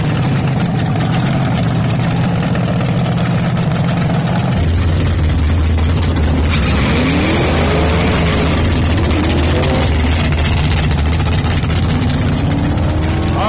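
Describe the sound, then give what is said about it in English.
Deep, rumbling engines of two vintage funny cars idle loudly and steadily as they get ready to stage at a drag race at Lakeland Motorsports Raceway in Lakeland, with a low throb that shifts pitch partway through as the motors settle into a heavier, lumpy idle. No one speaks. “We had an old vintage funny car right next to that guy, so they're both getting ready to stage.”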